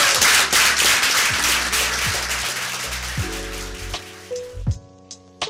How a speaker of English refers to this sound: So big round of applause for everyone, I think.